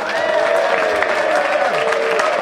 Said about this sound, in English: Thank you. Thank you very much. It would mean more if I hadn't done a special sign to make you applaud. But I'm sure you'd have done it anyway.